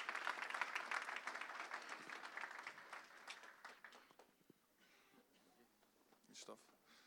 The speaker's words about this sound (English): Why don't we give these guys all a round of applause? Bless you all.